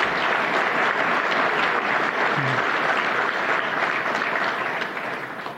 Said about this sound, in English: Please give them a round of applause for their leadership.